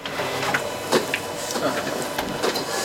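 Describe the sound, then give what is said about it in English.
A photocopier runs with a steady mechanical whir and hiss, broken by quick clicks and brief swishing bursts as paper feeds through, continuous and fairly loud for the whole stretch. “I'll make a few copies.”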